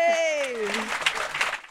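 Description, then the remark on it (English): A long falling vocal shout gives way to a dense, steady patter of audience applause for a man at a live show, many hands clapping together at a fairly loud level for the rest of the moment. “But he's still here, so round of applause for this gentleman.”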